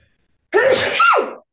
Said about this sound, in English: Bless you. That was astonishingly powerful.